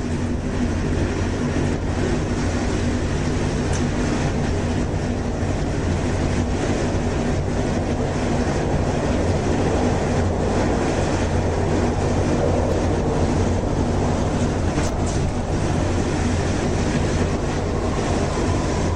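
A Washington DC Metro Red Line subway train rumbles steadily along its rails, a loud, continuous roar with deep low-end vibration and faint rattling, with no one talking.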